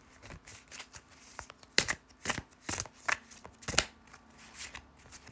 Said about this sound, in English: Okay, I have the cards in my hands and now I'm gonna start to shuffle them and let's receive a message for both me and you.